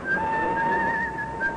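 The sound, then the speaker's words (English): A man whistles a steady, sustained melody as he walks through the weekend-bound crowds of Waterloo Station, clear and fairly loud, over a soft wash of busy crowd noise. “A calm, gay Jim Hudson made his way, whistling as usual, through the weekend-bound crowds of Waterloo Station.”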